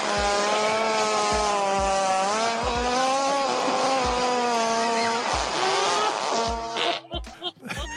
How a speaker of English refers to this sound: That sounds like a drone. That sounded like a drone.